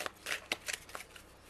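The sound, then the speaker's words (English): A deck of cards being shuffled: a handful of quick, papery riffling bursts in an uneven rhythm, fairly soft, with no voices. “And let's choose some other cards here. Let's shuffle here.”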